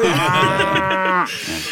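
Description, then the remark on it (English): A single long cow moo, loud, with a rich drawn-out low tone that cuts off abruptly and leaves a faint background hiss. “We'll talk about the certain flying cow later.”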